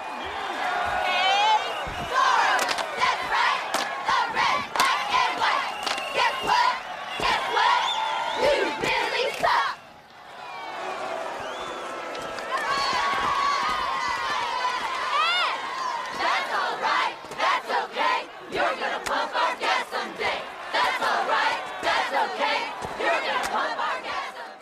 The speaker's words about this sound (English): you know, they do that cheer where it's like, that's all right. That's okay. You're going to pump our gas someday.